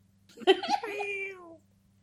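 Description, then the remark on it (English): A voice makes one drawn-out, cat-like meow, clear. It rises briefly and then slides down in pitch over about a second before fading into quiet. “Ah, it meows!”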